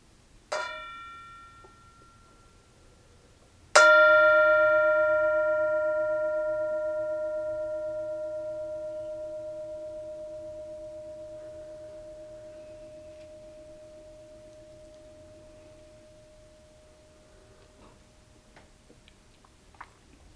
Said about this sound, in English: And so we have, as always, the mindfulness bell, and we invite you in this moment, right now, to enjoy the sound of the bell.